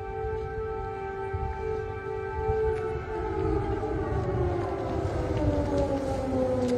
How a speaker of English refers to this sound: Oh, here's another one. Second missile siren. Nobody does anything. Nobody seems to care.